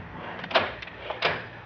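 An office door closes with a soft thud, followed moments later by a second sharp click-like knock as the door is locked while a safe is open.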